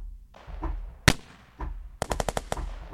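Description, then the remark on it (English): Synthesized gunfire being put back into a synth mix: a single sharp crack followed by a rapid burst of about six evenly spaced shots, with a rumbling low-end tail and no voices. “I'm going to put the guns back in.”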